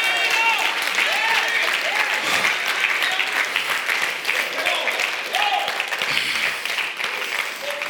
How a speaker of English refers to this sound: If you believe that this morning, I wish you'd clap your hands and give him a shout of praise and say, God, I'm ready, I'm ready, I'm ready.